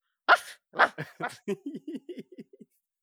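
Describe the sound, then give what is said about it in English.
A dog vocalizes: a few breathy, huffing bursts followed by a quick run of short, whiny grumbling yips that taper off, with no talking. “Can you talk dog? I can't talk dog.”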